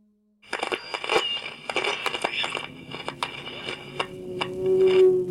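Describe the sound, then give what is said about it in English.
A plane crash: a loud burst of crunching, shattering impacts and rattling debris, followed by a steady droning roar that swells louder toward the end. No one speaks. “You hear the plane roaring down out of control and then crashing into silence.”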